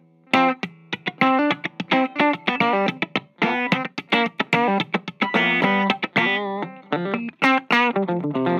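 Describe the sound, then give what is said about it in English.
An electric guitar plays a quick, busy run of snappy picked notes and chords through the compressor of a Route 66 pedal, with even, punchy attacks. It's fairly loud, with no one talking. “And then we have the Route 66. Of course, the compressor is, you know, that is so cool.”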